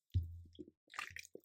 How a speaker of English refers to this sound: Let me take a sip of water here real quick.